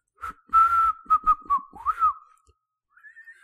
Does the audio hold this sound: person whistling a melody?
yes